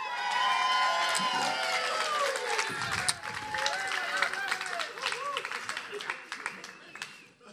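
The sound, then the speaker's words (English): A church audience cheers and applauds loudly, with overlapping whoops and shouting voices over steady clapping that holds for several seconds before gradually thinning out. “I know that all of, I mean, the cheer.”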